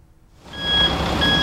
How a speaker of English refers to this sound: The truck backs up, a hose goes on, and water starts flowing in. This isn't a water plant, but a construction site near the Central Taiwan Science Park.